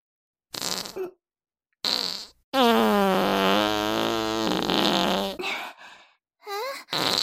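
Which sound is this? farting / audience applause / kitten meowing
farting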